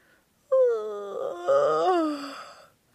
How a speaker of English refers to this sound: Wee sleepy sheepy streaked out his tired legs and gave a big yawn.